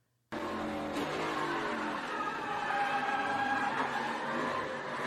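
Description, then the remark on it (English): Loud onboard sound from inside a race truck's cab during a crash at a raceway as Tyler Hill's truck hits its driver's side door: engine roar and harsh scraping, skidding noise burst in abruptly and stay dense for several seconds, with a sharp impact early on. “This has the crash and just audio from inside the truck, so check this out.”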